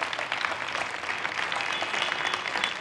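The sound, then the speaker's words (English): An audience claps their hands for the parking lot cast and those watching online, in dense, steady applause, many overlapping claps forming a continuous crackling wash that holds at an even loudness throughout. “Give them a big hand clap, parking lot cast.”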